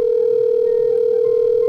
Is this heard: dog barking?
no